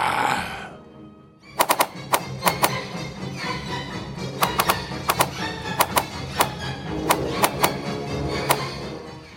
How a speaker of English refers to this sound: However, the wolf riders endured the hail of arrows and quickly closed the distance between themselves and the elite knights of the Empire who stood between them and the object of their ire, the dwarf cannons.